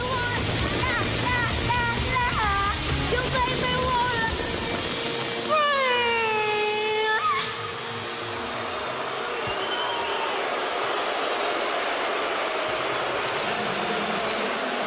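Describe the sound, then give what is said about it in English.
A sustained sung note with gliding, wavering tones fades out, and a large stadium crowd erupts in loud, continuous booing, a dense rumbling wash of voices that carries on steadily to the end. “and after singing the last line, the stadium audience booed her.”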